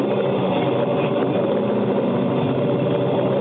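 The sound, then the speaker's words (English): A loud off-road race car engine roars steadily as the car pulls away, a dense, continuous rumble that holds its level throughout without clear revving or gear changes. “Apparently they had some trouble yesterday with the car. Obviously got it going for last night. And they're away.”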